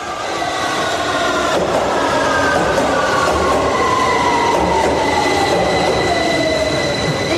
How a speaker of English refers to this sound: It's Sloan Square. This is a District Line train to Upminster.